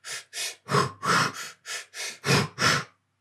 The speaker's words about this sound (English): I'm breathing for longer and then breathing in and then breathing out like super short, like super fast